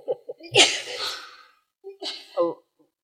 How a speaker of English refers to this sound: See, do you know what that sneezing was?